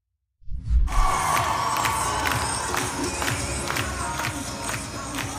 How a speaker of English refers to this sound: Yep, that's a dude dressed as a lady in a giant blue fright wig, gyrating around, and people cheering and clapping in the Minnesota state capitol.